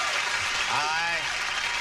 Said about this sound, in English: I love your applause, but on the other hand, with all that applause, you won't be able to hear the name of our next player.